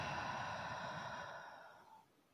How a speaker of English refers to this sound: And we're going to take in 3 deep breaths, breathing in through the nose. And exhaling through the mouth.